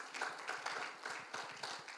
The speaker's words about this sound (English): Give yourself a hand clap for that. Amen.